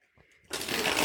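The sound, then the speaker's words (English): Quick rustle of a card deck being riffled, a dense papery flutter that starts abruptly halfway through after a near-silent moment and keeps going to the end. “All right, I'm shuffling the deck.”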